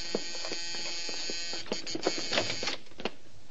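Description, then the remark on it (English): A doorbell rings as a harsh, steady electric buzz that drones without a break for a few seconds, with faint scattered clicks and taps over it and no voices. “The doorbell's ringing.”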